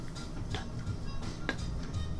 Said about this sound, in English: So I knock on the door. Bam, bam, bam. Nothing. I knock louder. Now! Nothing. Then I knock very softly.